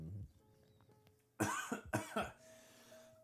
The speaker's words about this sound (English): after I cough.